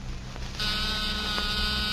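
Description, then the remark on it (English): A small battery-powered door buzzer kicks on after a brief pause and holds a steady, harsh electric drone for over a second, fairly loud, with no voices. “That's nothing but a small buzzer and battery set. An ordinary door buzzer.”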